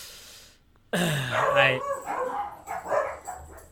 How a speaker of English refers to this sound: See, even your dogs know it's generic. They're like, boo, boo.